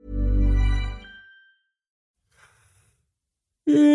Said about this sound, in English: Yeah, why am I yawning? That was a very good fake yawn. It wasn't a good fake yawn? I think it was pretty good.